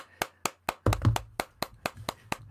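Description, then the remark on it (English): Steady, rhythmic hand clapping outdoors by neighbours clapping for the NHS on a Thursday at 8 o'clock, a few claps per second, sharp, with a couple of deeper low thuds briefly rumbling underneath; no one speaks. “Everyone's clapping.”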